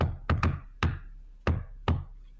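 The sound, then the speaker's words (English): Five sharp knocks on a door in a deliberate secret-knock pattern: a quick double rap, then three more evenly spaced knocks, loud and crisp with no voices. “I'm going to grab my backpack in the armory and do my secret knock.”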